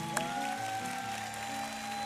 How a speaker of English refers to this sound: I know we typically applaud each other and greet each other. When we do it this morning, can we clap like it's the first time we've ever done it? Come on, let's greet one another in Jesus' name. Let's go.